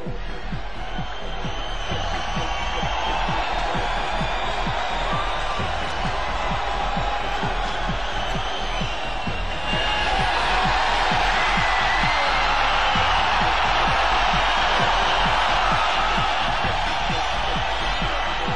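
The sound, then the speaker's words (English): A dense, steady roar of a large arena crowd of fans cheering relentlessly, loud throughout and swelling even louder about halfway through, with no clear voices standing out. “all of a sudden the fans started cheering and they got relentless with it, with the red and yellow.”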